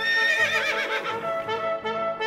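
A horse neighs loudly, a long, wavering whinny that rises and falls in pitch over about two seconds, with no voices.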